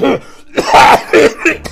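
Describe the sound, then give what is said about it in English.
A werewolf coughs in clouds of pale yellow gas from gas grenades: a series of rough, harsh coughs and throat-clearing hacks, about four bursts in quick succession, loud with a raspy, growling quality and no other sounds around them. “Less than a second passes and you hear the lupine beginning to cough.”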